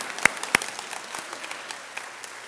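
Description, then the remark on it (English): Audience clapping fills the space in a dense, steady patter of many hands, with a couple of sharper, louder claps standing out near the start; no one speaks. “Yes, we can clap in a second. Well, we can clap right now, okay?”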